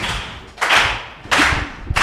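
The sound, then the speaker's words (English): An audience at the Pod Slam 1 o'clock show does a slow clap to welcome a group making its Pod Slam debut: three loud, broad crowd claps land in a steady, deliberate rhythm about two-thirds of a second apart, each with a brief smeared tail. No one speaks. “Let's do a little slow clap.”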